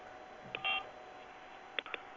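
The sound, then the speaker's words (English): Short electronic touch-tone beeps from a phone keypad, pressed on a phone during a call: one brief tone, a longer steady tone, then after a pause a quick cluster of two or three more, over faint line hiss. “I mean, she's just bored playing music to you if they're touch tones.”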